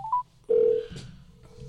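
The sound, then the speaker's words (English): A phone call being dialed to reach a caller who wants to speak: a couple of quick electronic beeps, then a louder steady tone and a fainter lingering hum, with no one talking. “And one of whom is on the phone and would like to speak with you.”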